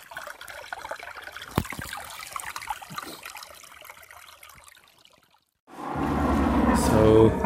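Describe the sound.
A small, beautiful stream trickles and babbles steadily at a soft, even level as a person sits beside it, then the person begins speaking as louder noise rises over the running water.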